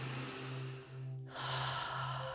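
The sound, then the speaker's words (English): Deep, steady circular breathing during a breathing exercise, a long inhale flowing into an exhale and back again with only brief dips between, over a low constant hum. “Circular breathing.”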